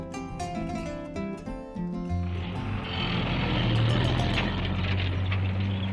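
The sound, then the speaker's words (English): A heavy food lorry engine rumbles in after a couple of seconds of voices, its low drone and broad road noise swelling slightly as it draws closer to a school building in Lorgumo, in the desert. “The sound of the food lorry brings everyone crowding around the school building.”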